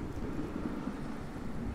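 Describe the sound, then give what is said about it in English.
A steady storm roars on without pause: wind and heavy rain blend into a dense, even rush with a low rumbling undertone, fairly loud, with no voices. “but as the storm got stronger, she disappeared from his view through the trees”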